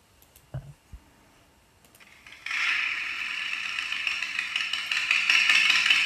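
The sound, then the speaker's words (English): A few soft clicks, then a loud, rough roar swells in and holds steady, growing slightly as a large gang of high-powered motorcycles rumbles by in the city of Sydney, New South Wales, Australia. No voices are heard. “As a citizen of New South Wales and Sydney, Australia, this is the sound that, you know, living in the city, you'd often hear at different times of the day or night, large gangs of motorcycles.”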